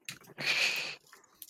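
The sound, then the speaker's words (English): Someone crunches on small chocolate mints: a few quick crackles, then a sustained, gritty crunch lasting about half a second, trailing off into softer clicky chews and faint breathing. “Oh, I'm just going to eat my little mints here.”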